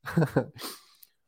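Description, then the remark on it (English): A short muffled vocal murmur, then a quick airy slurp as someone sips a drink, fairly quiet. “We got a lot more to cover, but let me catch my breath and take a sip of my drink.”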